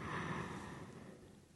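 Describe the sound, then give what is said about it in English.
A slow, deep breath drawn in, a soft airy rush that holds steady and then gradually fades, with no talking; a breath in at count ten of a counted breathing exercise. “So I want you to breathe in, and you're going to breathe in.”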